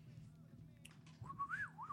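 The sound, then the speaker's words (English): A person whistles a brief, wavering tune that rises and dips in pitch, fairly quiet, over a low background hum. “That's my pussy whistle.”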